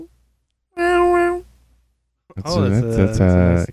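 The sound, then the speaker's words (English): A person imitates a cat, producing two loud meow-like vocal calls: a short, steady, high-pitched tone, then after a pause a longer wavering cry with a bending pitch. “That's a cat. Yes, that was a cat.”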